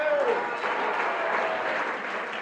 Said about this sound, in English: Clap your hands for Mental. Clap your hands for Normal. Clap your hands for them.